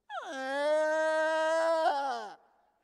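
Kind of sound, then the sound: vocal imitation, voice imitating a crying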